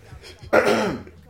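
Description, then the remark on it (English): A single harsh throat-clearing cough bursts out after a quiet moment, rasping for about half a second before fading. “Yeah, oh goddamn, it making me cough.”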